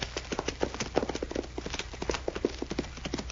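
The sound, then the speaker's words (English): Rapid, steady clip-clop of horse hooves at a gallop as a rider comes back this way along a trail, a dense rhythmic run of hoofbeats that stays prominent throughout, with no talking. “A rider coming back this way.”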